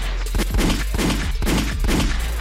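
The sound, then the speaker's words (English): A rapid burst of gunshot sound effects, several loud sharp bangs fired in quick succession with a rough, repeating rhythm, dense with no voices over them. “Oh, what my gunshot said?”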